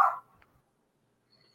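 A single sharp, loud dog bark at the very start from a dog being walked past by someone in Florida, followed by near silence with only faint background noise.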